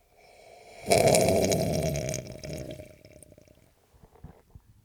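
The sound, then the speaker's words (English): A man loudly slurps coffee, a wet, sucking sip that starts abruptly, trails off into softer liquid gulps, and ends with a few faint lip smacks and clicks. “That was a man drinking coffee”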